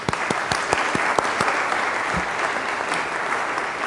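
A church crowd breaks into steady applause for the man who spearheaded the Methodist Men's donation effort, many hands clapping in a dense, continuous patter with a few sharper individual claps standing out across the whole stretch.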